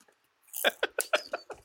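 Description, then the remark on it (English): Crunching of a guacamole flavored tortilla chip, bought at Chihuahua Market, being chewed: about six sharp, crackly bites in quick succession after a brief silence, loud, with no talking. “It is a guacamole flavored tortilla chip.”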